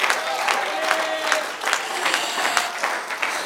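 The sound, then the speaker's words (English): A church audience claps steadily and densely during a prayer, a continuous wash of hand claps with raised voices and shouts unto God blending into the noise throughout. “Oh, clap your hands and shout unto God.”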